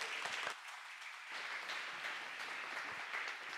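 A church audience applauds steadily, many hands clapping in a dense, even wash of sound that holds at a moderate level throughout, with no voices breaking through.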